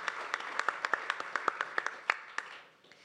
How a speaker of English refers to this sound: Thank you. Yeah, you can clap.